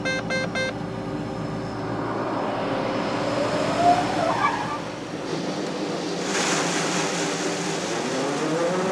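A steady, loud rush of about 12,000 pounds (300 bushels) of harvested corn pouring into the back of a truck, hissing like surf over the low drone of a running engine, continuous throughout with no voices.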